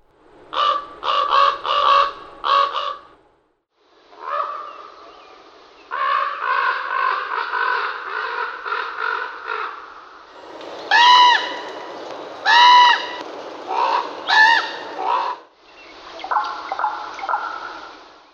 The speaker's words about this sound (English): Ravens, on the other hand, express themselves with such complexity that we're overwhelmed. We're tuned to the melodies of human music and struggle with the multifarious shapes of raven croak and click and whistle.